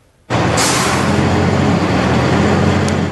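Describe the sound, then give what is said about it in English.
A heavy truck's engine kicks in abruptly and rumbles loudly and steadily, a deep droning roar with a wash of road noise and no voices, as the truck hauls a 1,200-square-foot rancher house through the streets from a southwest Richmond neighborhood to Steveston, Metro Vancouver, in a pre-dawn operation. “A pre-dawn operation this morning picked up this 1,200-square-foot rancher from a southwest Richmond neighborhood and trucked it through the streets to Steveston.”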